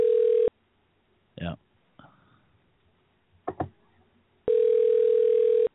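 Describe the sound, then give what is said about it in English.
A phone line rings out unanswered: two steady electronic ringback tones about four seconds apart, with a few brief muffled sounds in the quiet gap between them. “nobody else would answer the phone”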